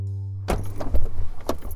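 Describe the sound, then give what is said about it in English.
A silver Ford Fusion's engine hums steadily inside the cabin as it drives the winding roads of Kessler Park in northeast Kansas City on a hot day with the AC on full blast, then metal keys jangle and clink in a few loose bursts over the ongoing drone. “Amori Justin is navigating a silver Ford Fusion along the winding roads of Kessler Park in northeast Kansas City”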